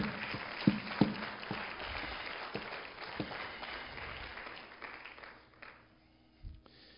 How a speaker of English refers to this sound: Let's give him a hand clap of praise and adoration.